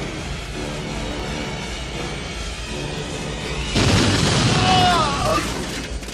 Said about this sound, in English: Dietrich, who sets off a flamethrower, which hits Frost, sends him over the side and falling down, and then the ammo explodes. And all I've got written down is, then all hell breaks loose.